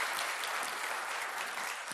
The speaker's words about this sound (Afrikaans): Ek het glad nie die hande klap beplan nie, totdat ek besef het, ons is live, ons praat nie met 'n kamera nie.